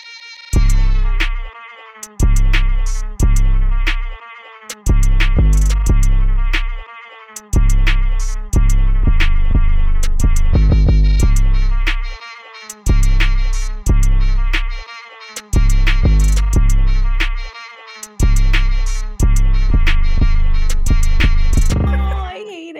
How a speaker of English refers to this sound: You can probably still hear my cat now because I'm holding the mic up to him. I can hear the cat when you did that. He's not a huge fan of the mic.